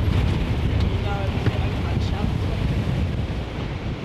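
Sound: strong wind blowing outdoors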